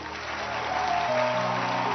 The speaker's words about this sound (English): I want to hear another loud hand clap.